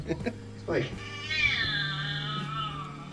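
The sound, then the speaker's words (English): A cat lets out a drawn-out, warbling meow that rises and then slowly falls, clear, with a low hum running underneath. “It's a weird fucking cat.”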